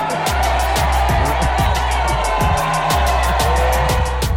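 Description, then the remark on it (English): A large live crowd cheers and whoops loudly and continuously, with a steady rhythmic clapping or pounding running through the dense roar for the whole stretch. “We got a lot of crowd here today.”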